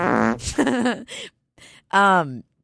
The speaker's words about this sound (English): When I told the story on here, I just farted. I'm really sorry. It might stink.